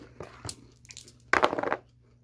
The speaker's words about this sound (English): Maybe don't eat so loud next to the mic.